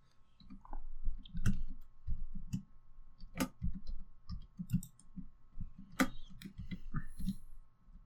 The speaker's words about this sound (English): Okay, I'll do it real quick. Hold on. Typing with one hand is bad.